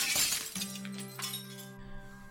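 A pane of glass is smashed with a rock at a house with a locked door: a loud, bright crash right at the start, then shards tinkling and a sustained ringing tone that slowly fades. No one speaks.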